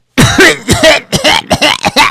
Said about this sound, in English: Well, what's your problem over there? What seems to be the problem? How come you're coughing? Am I coughing? Was that me? I thought you were coughing. No, you were coughing.